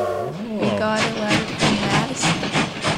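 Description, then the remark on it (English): A train sound effect: a brief tonal whistle-like blast at the start, then loud, rhythmic chugging and clattering bursts that rumble steadily, as if a train is pulling in. “I hear the train coming in, and it's time for train mail.”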